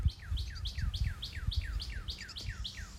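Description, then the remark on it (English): A bird chirps in a steady, repeating series of quick downward-sweeping notes, about three or four per second, clear, over a low rumbling background. “And my suggestion today is, if this bird keeps it up, which it may do, okay?”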